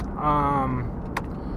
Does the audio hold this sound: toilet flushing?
no